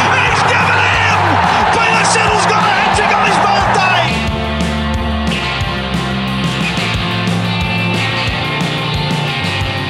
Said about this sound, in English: Crowd cheers. Here's Siddle. Oh, the ball is close! He's given it!